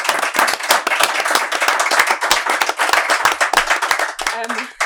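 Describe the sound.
A room of people applauds steadily, a dense, sustained patter of many hands clapping at close range, with a voice briefly rising over it near the end.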